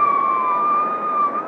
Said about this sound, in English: Come on, let's go. You better have the siren